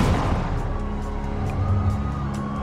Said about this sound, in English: Moments later, gunfire.